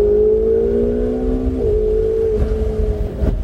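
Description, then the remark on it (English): A loud race car engine drones with a steady, buzzing tone as the driver, being coached on a track, gives it more gas, its pitch creeping upward as it accelerates and then holding level over a low rumble. No voices are heard. “Driving a RaceCar”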